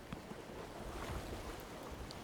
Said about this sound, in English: I turn my head slightly and find another sound. It's always the water. Always the water.